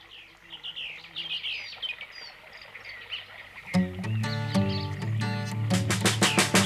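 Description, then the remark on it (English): Bird and insect sound effects in the UK mono mix of a song's intro: birds chirp and twitter over a steady insect-like buzz for a few seconds, then loud music bursts in and the chirping continues faintly beneath it. “And now let's compare the intros as they're mixed in mono, starting with the UK mono, which is different from the intro I've already played on the UK stereo, as there's insect and bird sound effects going on that are completely absent in stereo.”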